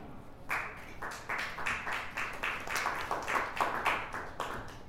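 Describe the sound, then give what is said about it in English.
An audience claps in a steady, rhythmic run of sharp, bright slaps that starts after a brief pause and keeps going at moderate loudness, with no one speaking over it. “You don't have to clap for every time you get tired of doing that.”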